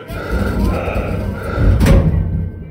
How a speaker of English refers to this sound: I watched the doors close.